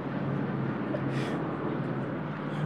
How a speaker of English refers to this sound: The helicopter's circling, everyone's finding out. Three helicopters, four or five. Oh my God, that's crazy. Why do we need five helicopters?